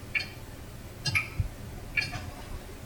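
A clock ticks steadily, three crisp, fairly quiet ticks spaced just under a second apart, with only a faint low hum in the background and no voices.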